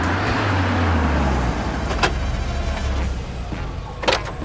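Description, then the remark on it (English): A van's engine rumbles low and winds down as it screeches to a halt in a street, followed by a couple of sharp clunks like a door, with no voices. “While sweeping the street, Abby is alerted to a van screeching to a halt.”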